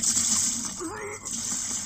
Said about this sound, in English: We play like a different sound effect for vomiting, and it sounds too real, so that's gross.